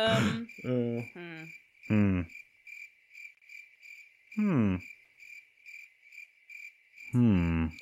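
Steady, high-pitched crickets chirp continuously in a pulsing trill, with a few short, low groaning voice sounds breaking in at intervals over the top.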